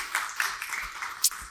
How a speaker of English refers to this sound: You can clap.